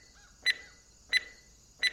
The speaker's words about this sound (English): Well, you could stow that beeping beeper, for starters. I'd wager it's gotten us as far as it's going to, and now it's just alerting everyone to our presence.